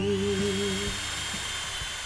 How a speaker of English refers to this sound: I love the sound of power tools in the morning.